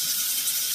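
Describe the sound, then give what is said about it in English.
A steady, hissing rush of water pouring from a tap, fairly loud, continuing evenly without any voices. “Step two, turn the water on.”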